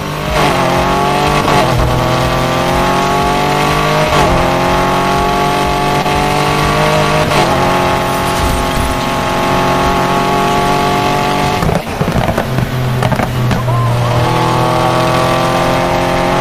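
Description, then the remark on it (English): A video game car engine revs hard and steady at high speed as the car drives past a police car, its pitch climbing and dropping with each gear shift, loud and continuous throughout with no talking. “I just went by a cop car. I don't even know how fast.”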